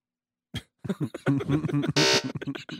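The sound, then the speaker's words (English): A harsh, nasal game show buzzer blares in a string of rapid pulses, fairly loud, with a brief hissy burst partway through. “Buzzer.”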